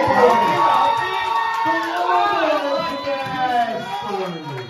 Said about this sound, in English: Give us a round of applause.